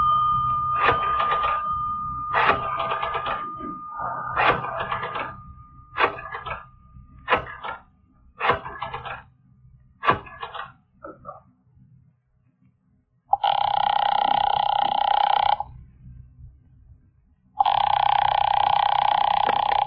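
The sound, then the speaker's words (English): A payphone in a hallway rings twice, each steady electronic ring lasting about two seconds with a short pause between, loud. It follows a run of short, choppy bursts of sound, with no talking. “He won't answer. It's ringing.”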